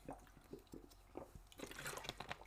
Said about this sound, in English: Sorry guys, just gotta take a swig of water.